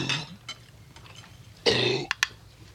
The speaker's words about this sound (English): Oh, he's just yakking on a bone. He got it up. He's all right now.